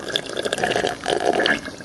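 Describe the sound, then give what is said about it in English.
Bubbly, gurgling water sounds, a steady burble of air blown through drinking water in two short bursts, with no talking. “Are you blowing bubbles?”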